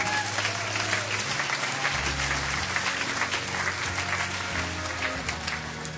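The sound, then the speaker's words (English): Sustained applause from a large audience, a steady dense wash of clapping lasting several seconds, with a low musical hum running underneath. “And for that, he gets applause.”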